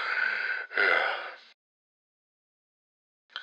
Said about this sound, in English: Jesus Christ, that fucking heavy breathing. I'm actually dizzy from doing that fucking cheeseburger, whatever the fuck his name is.